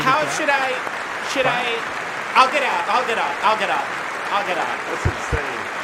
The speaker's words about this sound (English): More than 1,500 sadistic traffickers have been put behind bars. This is just like, that's everyone is clapping.